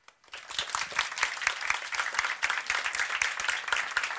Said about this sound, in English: And she's here with us tonight, and she truly deserves an applause for her achievement.